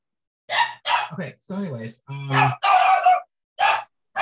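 A dog barks and yelps excitedly in a rapid string of about seven loud bursts, some high-pitched and whiny, with brief gaps between them.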